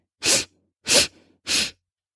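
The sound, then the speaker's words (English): Three quick, evenly spaced sniffs through the nose as part of a guided breathing exercise, each a short breathy hiss of air, with no talking over them. “Three quick sniffs.”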